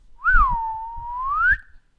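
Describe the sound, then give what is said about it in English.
A person whistles to call an animal: a single sustained whistle, rising sharply, dipping into a long steady tone, then sweeping up again at the end, clear with a faint low rumble underneath. “as she whistled for the last unicorn.”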